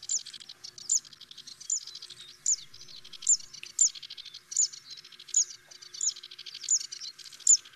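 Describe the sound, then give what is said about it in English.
A zitting cisticola (Cisticola juncidis), a small warbler, sings its sharp, repeated "zit" notes at a steady rhythm, about one every half second, clear with no talking. “Zitting Sisticola, the Latin Sisticola juncitis.”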